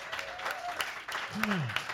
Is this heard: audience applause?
yes